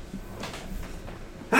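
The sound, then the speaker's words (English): A few breathy inhales build up, then a sudden loud sneeze bursts out right at the end. No one speaks. “… sneezing. Ugh. Bless you.”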